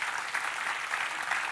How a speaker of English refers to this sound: You can give God a clap offering for that.